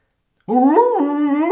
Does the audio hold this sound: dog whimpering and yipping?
yes